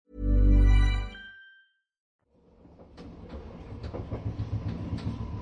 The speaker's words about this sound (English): Slowly, the train grinded to a halt, pulling into the station.